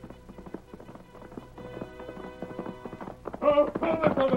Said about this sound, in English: Look at that horse come. Look at the Lone Ranger ride.